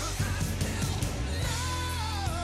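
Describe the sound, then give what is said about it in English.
Loud, dense rock music with a strained, screaming vocal line soaring and sliding over heavy, pounding instruments, played continuously. “This is one of those hidden gems on these albums that really... Look, just hear them screaming out here.”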